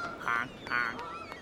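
canada geese honking

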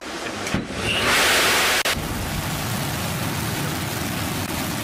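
rocket engine launch roar

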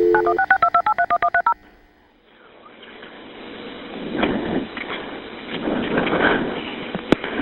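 telephone dialing tones

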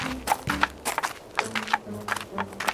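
knocking on a door

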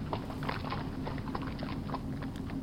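horse hooves clip-clopping

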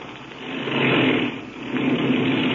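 small airplane engine running

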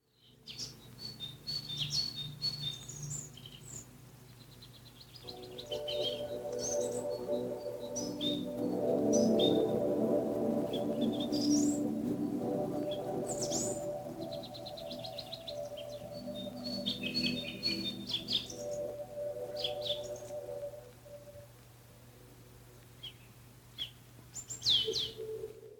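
small birds chirping

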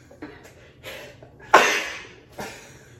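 sneeze

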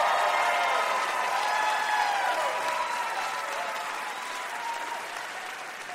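audience cheering and applause

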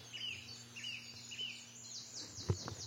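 song thrush singing

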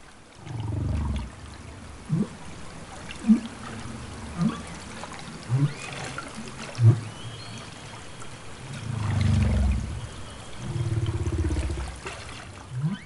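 humpback whale underwater vocalizations

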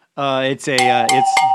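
cowbell being struck

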